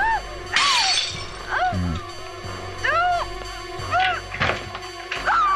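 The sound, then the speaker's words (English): A glass patio door is smashed with a loud, sharp crash, followed by a couple more bangs and breaking noises, while high vocal cries rise and fall in between. “And Jamie Lee is about to smash the glass.”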